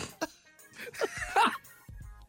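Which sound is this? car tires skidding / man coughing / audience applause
man coughing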